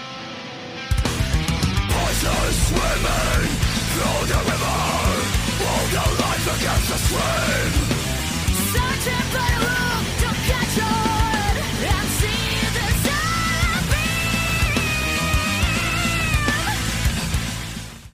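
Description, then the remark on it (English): A deep, guttural female death growl, produced from the abdomen, roars over loud, dense heavy metal instrumentation, sustained and aggressive for nearly the whole stretch, with drawn-out wavering vocal lines toward the end. “I've never really heard a woman make like such a deep guttural scream in metal.”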